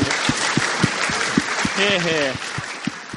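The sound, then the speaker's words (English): A crowd breaks into steady, dense applause, many hands clapping at once with a few heavier claps standing out, while a brief voiced cheer rises over it midway. “I think we need a round of applause at that point.”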